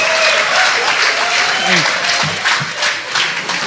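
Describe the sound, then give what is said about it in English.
An audience breaks into steady, loud applause at the end of a comedy bit, a dense wash of clapping that holds for several seconds, with a few voices and cheers mixed in. “But so, you earned that applause break.”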